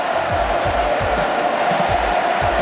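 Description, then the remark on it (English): A large stadium crowd at a football match roars continuously in a dense, loud wash of cheering as St Kilda's Milne kicks his 10th goal of the game, with rhythmic low thumps pulsing underneath throughout, no single voice standing out. “Listen to the crowd.”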